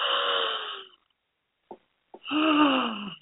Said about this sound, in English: And the ending of it is also the sound of an open throat when the shoulders just want to drip down. And it's that shoulders dripping down with a big exhalation that again tells your body, we're done.